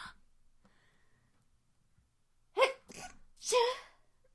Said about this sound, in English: Oh, I have to sneeze.